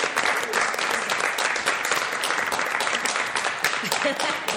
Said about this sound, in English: I think that's a great note to wrap it up on. A round of applause for our panelists. Please.